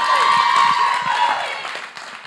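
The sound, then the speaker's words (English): Steady audience applause at a church worship service for a woman about to give her message, many hands clapping at once, loud and dense, mixed with a few cheers, gradually tapering off over about two seconds. “So let's all give her a round of applause.”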